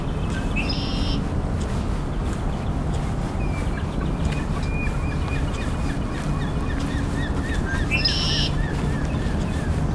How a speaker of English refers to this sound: Oh, and there's a herring gull too.